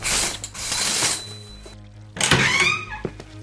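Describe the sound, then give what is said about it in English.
An apartment door unlocking mechanism, mounted on the door frame above the door, whirs and ratchets in two bursts, a buzzy grinding run followed by a pause, then a second clattering mechanical burst ending in a clunk. No voices. “The door doohickey. The unlocker. It's on. The door frame above the door.”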